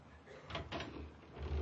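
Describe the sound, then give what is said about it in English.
A heavy, solid, unlocked wooden door to a walled-up room creaks open, with two short scraping bursts followed by a low, rumbling groan as it swings; no voices are heard. “This is the door to the room that's walled up, isn't it? Pretty solid. Hey, Grandpa, open up.”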